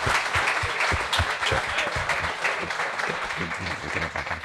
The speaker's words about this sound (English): Nice big round of applause, folks.